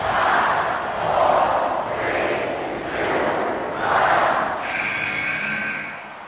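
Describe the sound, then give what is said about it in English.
A large wrestling arena crowd roars and cheers loudly as wrestler Jack Jester is eliminated by Kurt Angle's Angle slam over the top rope to the floor. The noise swells and surges in waves throughout, with no clear individual voices standing out. “The crowd popping huge as Jack Jester is gone.”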